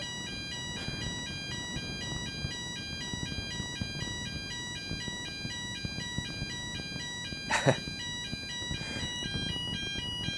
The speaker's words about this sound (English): Fire alarm test.